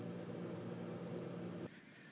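A loud, steady mechanical hum from an air conditioner unit drones with a low buzzing tone, then abruptly cuts back to a quieter hiss near the end.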